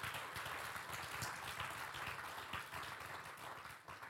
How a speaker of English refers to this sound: Give the Lord a mighty hand clap there.